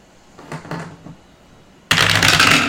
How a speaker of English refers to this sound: I actually rolled the wrong dice. What did you roll? I rolled 2 tens.